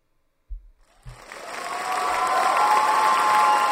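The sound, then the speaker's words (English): A large crowd bursts into applause after a couple of low thumps, the clapping and cheering swelling quickly into a loud, dense roar that holds steady to the end. “The crowd erupts. People are clapping and cheering.”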